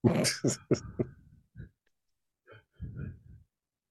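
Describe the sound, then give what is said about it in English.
A quick run of four harsh coughs, followed by quieter rasping throat-clearing sounds and a brief gruff grunt near the end. “And all I do right now is cough, sneeze, drain, and cry.”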